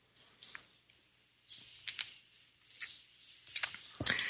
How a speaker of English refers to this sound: Going to take a sip here.